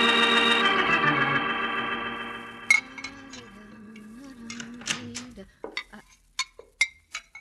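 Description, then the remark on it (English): Dishes and cutlery clink and clatter as they are washed in a cafe kitchen, an irregular series of sharp knocks growing more distinct as a sustained tonal hum fades away beneath them. “keep on washing your dishes.”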